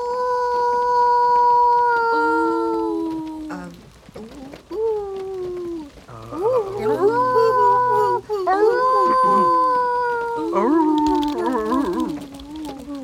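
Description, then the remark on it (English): A person howls like a coyote in long, sustained, wavering tones that rise and fall, repeated several times with only brief pauses between the howls. “I don't even know how to cry like a coyote. Oh, it's easy. You just howl, see?”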